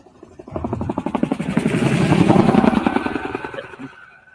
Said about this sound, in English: Now container on the back is opening up. Radar system deployed. So that's going to call the shots. Unmanned drones out of containers.